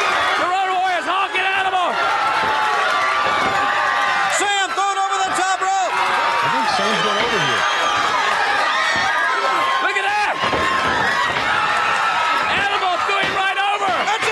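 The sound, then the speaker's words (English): A loud, sustained crowd roar with whoops, shouting and scattered clapping fills the whole stretch, swelling in bursts with occasional sharp slams cutting through the din, as the crowd cheers Sam Houston's upset win in a match also featuring the Road Warriors. “Crowd goes wild.”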